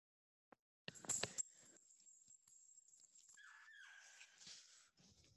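Dogs romping in the middle of a living room, with a burst of thumps and scrabbling paws followed by a sustained whiny, high-pitched vocal noise and shuffling, fairly loud with no talking.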